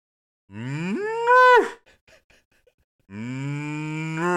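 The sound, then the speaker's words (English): A person imitates a cow, letting out two long, loud mooing calls with a rising, wavering pitch, separated by a brief pause with faint breathy noises. “Let me hear your best moo.”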